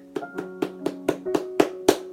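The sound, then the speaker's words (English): Steady, rhythmic clapping given as a clap offering to the Lord, about eight sharp claps in time that grow louder toward the end, over a sustained musical tone and with no voices. “Why don't we give the Lord the loudest clap offering that we can give Him today?”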